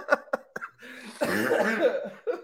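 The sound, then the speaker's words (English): Loud coughing: a few sharp separate coughs, then a longer rough hacking burst, with one more short cough at the end. No words are spoken. “I'm sorry, I'm so coughing.”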